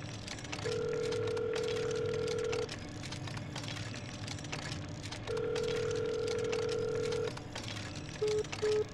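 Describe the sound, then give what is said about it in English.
Telephone call tones: two long, steady electronic beeps separated by a pause, followed by two quick short beeps, heard clearly over a low background hum with no one speaking. “I'll call Paul.”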